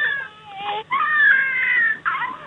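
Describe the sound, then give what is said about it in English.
An electronic, battery-powered crying baby doll, the second of two the caller has, heard over a phone-in call to Talk Radio, cries in repeated wailing bursts, high-pitched and warbling with a synthetic, tinny quality, pausing briefly between cries. No one speaks over it. “Why have you got two crying baby dolls?”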